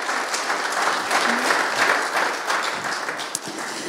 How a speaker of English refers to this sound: can we just applaud him and his family again?